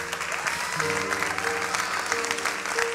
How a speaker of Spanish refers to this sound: ¿Sí ve cómo bajan los aplausos allí?